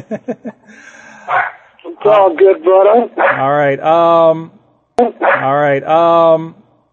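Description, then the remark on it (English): Dogs bark and yelp in clustered bursts, some stretching into whiny, pitched howls. They sound loud, with a short pause before another run of barking. “Oh, well, the dogs are going.”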